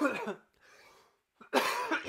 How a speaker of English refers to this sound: Sorry, I'm gonna cough again.